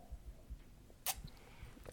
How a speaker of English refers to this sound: I'm gonna take another sip of eggnog.